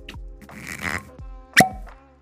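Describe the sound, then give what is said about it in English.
A cork is pulled from a fresh, unopened whisky bottle: a second of squeaky, rustling twisting, then a single sharp, hollow pop that stands out loudly, with brief quieter handling noises after and no talking. “And I'm just going to open this one as a freshie for you.”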